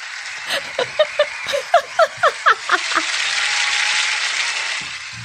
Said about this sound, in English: Just an applause. That's a round of applause. She's won. Yeah, she's won. So. That's from YouTube. Do we have to like get the rights to that round of applause? Recorded oh, that's live. True. That was recorded live.